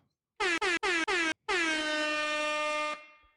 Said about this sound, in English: We need the air horn. I think you and I mentioned that we've underutilized the soundboard recently, yeah. So we need more air horn and dog and cha-ching and all that good stuff.